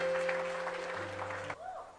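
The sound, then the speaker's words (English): An audience claps in a steady, dense burst over sustained low keyboard tones, then the applause cuts off abruptly and a softer sliding tone follows. “Yes, you can clap.”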